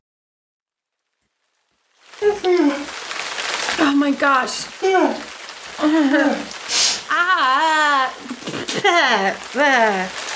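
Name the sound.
rain starting to fall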